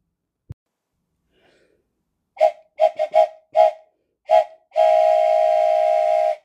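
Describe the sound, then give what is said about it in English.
A train whistle toots in a quick series of short blasts, then lets out one long sustained hoot, loud, with no talking over it. “Let's take a train ride together.”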